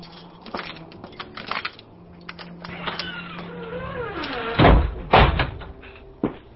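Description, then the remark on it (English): A man's front door creaks, then slams shut with two heavy, booming thuds in quick succession, loud, followed by a lighter knock. Nobody speaks. “He slammed his front door and made his way up his dreary stairs.”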